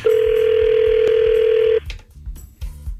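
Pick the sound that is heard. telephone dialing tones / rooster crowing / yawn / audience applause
telephone dialing tones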